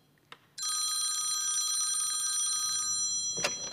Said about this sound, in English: That phone hasn't stopped ringing all day.